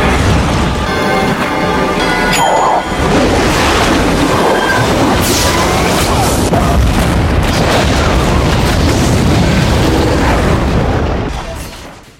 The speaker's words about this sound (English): And it makes it have such a super satisfying conclusion when he, like, escapes and then literally blows the fucking shark up in the kitchen.